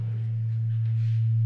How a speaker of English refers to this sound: This is the little bit of reverb you said if I moved it forward might happen. I've got it really high today.